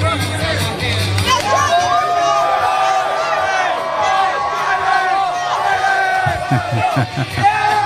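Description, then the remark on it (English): A large crowd cheers and shouts continuously for President Trump as he signs footballs, many overlapping voices forming a loud, dense roar with scattered whoops and higher yells rising above it throughout. “And they're cheering Donald for him right there.”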